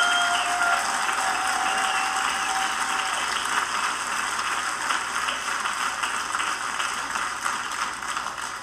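Steady audience applause for a pastor and his wife, a dense wash of clapping from many hands that holds at an even, fairly loud level for several seconds before easing slightly at the end. No voices are heard.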